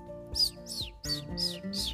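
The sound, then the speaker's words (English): A bird named Chirp, stuck high up a tree, chirps five times in quick succession, bright high tweets spaced about every half second, with a soft low musical hum sustained underneath. “Chirp was stuck high up that tree that Miss Emma's kitty was trying to climb up.”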